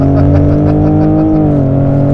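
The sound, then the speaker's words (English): A pickup truck with a fuel pump booster, S&B intake and stock exhaust roars steadily under load, its deep harmonic drone loud, with the pitch shifting slightly partway through as it pulls. No voices are heard. “And it just pulls and carries you. Yeah, the truck runs, it runs strong, man.”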